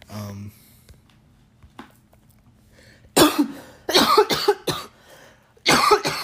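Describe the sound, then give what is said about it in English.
After a few quiet seconds, someone breaks into a harsh, loud coughing fit from smoking weed: a rapid series of raspy bursts, a brief pause, then more hacking coughs. “That's a weed cough. It's not the Rona.”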